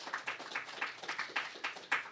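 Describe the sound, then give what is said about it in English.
Light audience applause for the panelists at a Mosaic Institute talk: a steady patter of crisp, overlapping claps at a fairly quick rhythm, soft overall, sounding like a modest group clapping together, with no voices. “Let's give a round of applause to our panelists.”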